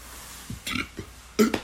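A fairly loud burp comes out in a few short guttural bursts over about a second, ending with a sharper, louder gulp. No one speaks.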